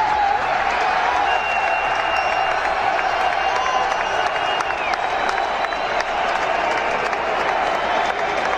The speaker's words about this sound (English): Big day for Donald Trump when he was received with a standing O at UFC 287. And then the crowd starts chanting USA. Let's hear what it sounded like.